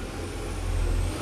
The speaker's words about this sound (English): That's a truck going by, y'all, too. So, with that noise, a truck going by.